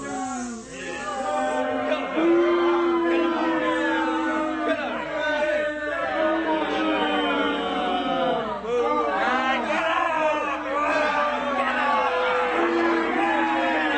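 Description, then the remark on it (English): A large crowd boos loudly and continuously, many voices merging into long, drawn-out jeering tones with scattered shouts and whoops throughout. “Boo to all of you. You're terrible people. You all get booed.”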